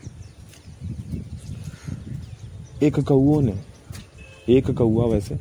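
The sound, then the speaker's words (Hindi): A single crow caws loudly twice, two harsh, drawn-out calls a second or so apart, after a stretch of low background murmur. “कौआ एक ही है, तो उस एक कौए ने मतलब आसमान में ऐसा तहलका मचा के रखा हुआ है कि मानो मतलब कुछ हो गया उसको, अब ना कुछ हो गया, कुछ ऐसा देख लिया है,”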